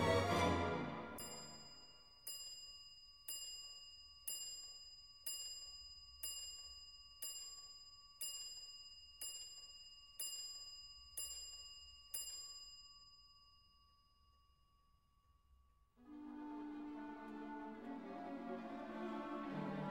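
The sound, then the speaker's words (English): A mantel clock over a fireplace chimes twelve times, clear ringing strikes spaced about a second apart, each tone hanging and fading before the next, with music swelling in afterward. “And as he turns around, the clock over the fireplace on the mantel chimes 12.”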